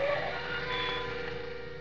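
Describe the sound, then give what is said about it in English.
A car on Brighton Avenue brakes hard to a sudden stop as the driver slams on the brakes, with a sustained high tire squeal over a low engine rumble, fairly loud, lasting a couple of seconds with no voices. “All at once, I slammed on my brakes.”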